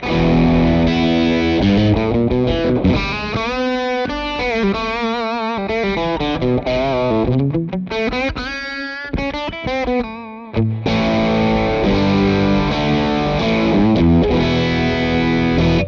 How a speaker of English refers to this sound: just, of course, with this guitar, with a Strat-style guitar, single coils, it's a little brighter on the bridge, obviously, a little quackier, people like to say. So I would generally roll that tone down just a hair. Maybe, let's try 11 o'clock.